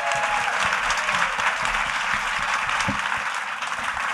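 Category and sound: crowd, audience applause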